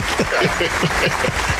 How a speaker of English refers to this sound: Can the crowd clap it up for us, man? They're doing it right now. You don't you hear them? Oh, I hear them. Man, they loud.